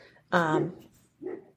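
Two dog barks from two dogs next door, heard through an open window at night: a loud, full-throated one followed a moment later by a softer, shorter one.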